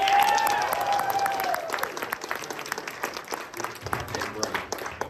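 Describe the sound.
A crowd breaks into sustained applause for a Sonic Adventure 2 Battle shirt during a game trivia quiz, dense overlapping claps at a steady level, with a few cheers and voices rising over the clapping near the start.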